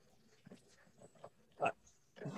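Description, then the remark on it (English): A pig sound effect: a pig grunts and snorts in a short, irregular series. The first grunts are soft and scattered, then they grow louder, ending in a strong snort. “This is from the pig sound effect. Pig sound.”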